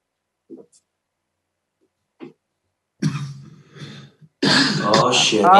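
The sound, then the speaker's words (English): A person at home coughs into their hand: a couple of small muffled bursts, then louder, harsher coughing and throat clearing, building into a dense rough stretch at the end. “you just coughed in your hand, dude.”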